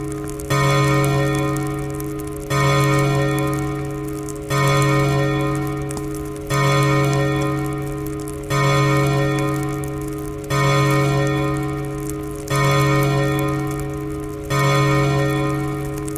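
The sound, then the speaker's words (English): A clock strikes nine in the morning with a slow, steady series of resonant, bell-like chimes about two seconds apart, each ringing and fading into the next, clear with no talking. “The clock struck 9.”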